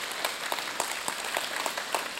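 An audience applauding steadily, a dense wash of many hands clapping with faint individual claps popping out at irregular moments, sustained at an even, moderate loudness with no voices.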